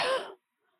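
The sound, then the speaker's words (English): A single short, breathy cough bursts out and cuts off abruptly, followed by near silence. “Notice how the muscles, maybe in your neck, cough again.”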